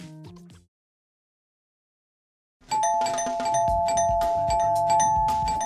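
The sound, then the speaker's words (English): A doorbell rings loudly at the gates of a candy factory, a sustained buzzing tone layered over busy mechanical clatter, following a brief chime and a couple of seconds of silence. “we're pulling up to the Snood Candy Factory gates, where Lucy is about to ring the bell”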